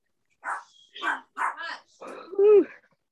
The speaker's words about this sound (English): So my dog is barking.